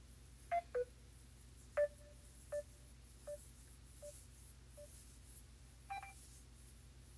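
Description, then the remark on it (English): A dropped phone call: about eight short electronic dial-tone beeps at irregular intervals, the first few louder and later ones fainter, over a low steady hum with no talking. “I don't know what happened to Ghost. Call ending.”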